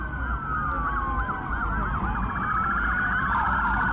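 Several police sirens wail and yelp over each other continuously, loud, as more police cars arrive at a mall near Bayside at night, with a steady low rumble of traffic underneath and no talking.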